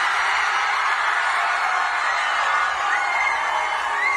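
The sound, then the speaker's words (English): A big crowd cheering in a steady, loud, dense roar that holds for about four seconds, with a few high whoops or whistles rising over it near the end. “That sounds like a big crowd of beautiful people.”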